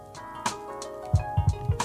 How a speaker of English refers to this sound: I rang the bell for that.